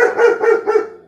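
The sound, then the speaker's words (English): A female dog barks three times in quick, steady succession, the barks fairly loud with no one talking over them. “My dog is mad at you.”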